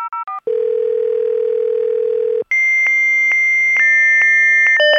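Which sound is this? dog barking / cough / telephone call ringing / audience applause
telephone call ringing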